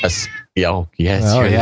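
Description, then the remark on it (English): A pet cat meows loudly three times in quick succession, each cry a drawn-out, wavering yowl with brief pauses between them. “Oh, and if you hear that, that's actually a cat.”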